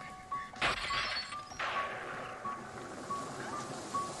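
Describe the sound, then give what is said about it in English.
A sharp crash of breaking glass bursts out and shatters over about a second, followed by a fading tinkle, while a faint repeating electronic beep continues in the background. “Oh crap, I accidentally made a pun since the glass cracked.”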